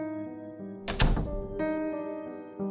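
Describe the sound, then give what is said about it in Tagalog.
A bedroom door shuts with a solid thunk, two quick impacts blending together, over a steady low hum, followed by a fainter knock a moment later. “Pagsara ng pinto, ay sinubukan kong muling matulog.”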